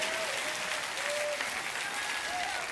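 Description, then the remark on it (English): An audience claps as an offering of praise to the Lord: dense, sustained applause from many hands at a steady, loud level, with faint tonal calls and whoops rising above the clatter. “Oh, give the Lord a clap offering of praise.”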